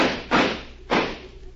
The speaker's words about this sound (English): Stand aside. I'm going to shoot the lock off that door.